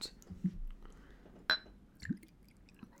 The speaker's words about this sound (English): Okay, so here we go. We're going to pour this drink. Oh, it makes a sound.